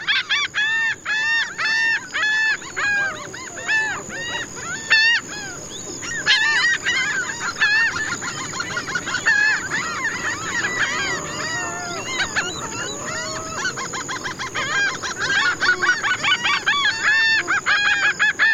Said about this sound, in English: Antonio Celis Murillo recorded this soundscape for …